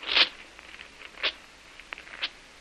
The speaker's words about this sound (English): I'm tearing it up and burning it.